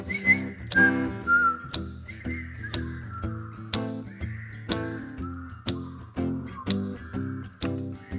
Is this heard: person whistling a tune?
yes